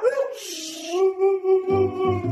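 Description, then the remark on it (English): Manson, a gray-coated, blue-eyed Siberian husky, lets out one long, loud howl in a house. It rises briefly, then holds a steady wavering mid-pitched tone. Low rhythmic pulsing sounds join beneath it near the end. “So when he's yelling, he's kind of like, woo, like really loud, like throughout the whole house.”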